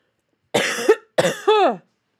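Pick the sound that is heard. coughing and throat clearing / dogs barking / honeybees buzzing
coughing and throat clearing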